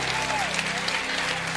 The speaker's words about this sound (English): Put your hands together and clap and give him the hand clap that he needs right now.